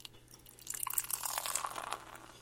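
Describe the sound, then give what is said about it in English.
Uinta Brewing 801 Pilsner beer, 5% alcohol by volume, pours into a glass with a fizzy, bubbling hiss that starts after a brief pause and builds steadily, fairly quiet, with no talking. “And the pour.”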